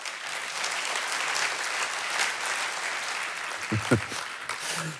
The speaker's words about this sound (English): We're going to give you a huge hand and $20.